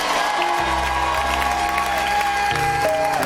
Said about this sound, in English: Come on. Can I hear somebody clapping hands as you mean it?